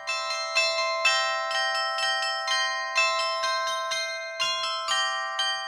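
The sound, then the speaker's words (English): Clock tower bells chime out a steady melody, each bell struck cleanly by a hammer worked by a computer-controlled electric solenoid and ringing on with long overlapping resonance, played at a regular mechanical pace with no voices present. “In the clock towers of churches and town halls, mechanisms were further developed to play tunes on the bells that were hung alongside the clocks.”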